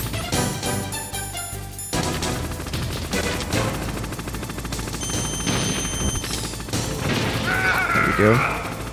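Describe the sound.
Dense video game gunfire from an enemy rattles in rapid bursts over a loud, busy mix of explosions, engine drone and music, with rising whistling tones near the end; a voice talks faintly underneath.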